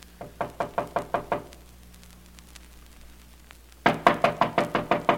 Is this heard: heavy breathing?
no